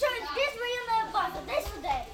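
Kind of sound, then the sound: crowd, children playing and chattering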